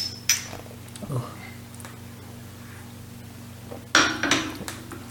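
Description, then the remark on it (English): Shot glasses clink together in a toast: a couple of light taps early on, then a louder, ringing cluster of clinks near the end, over a steady low hum. “Everybody raise their glass.”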